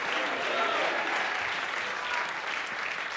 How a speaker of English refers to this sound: Give the Lord a hand clap of praise and one more hallelujah.